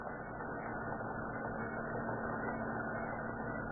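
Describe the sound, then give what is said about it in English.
A roadster's car engine idles steadily in fog at the city dump on the eastern limit of Huntington Beach, a continuous low rumble with a faint mechanical hum, holding an even loudness throughout with no voices or other sounds. “All right, Prenny, douse the lights and pull up close to where she's burning there. That's good. Kill your motor and we'll get busy.”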